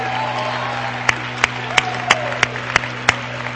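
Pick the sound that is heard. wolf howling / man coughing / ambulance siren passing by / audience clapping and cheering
audience clapping and cheering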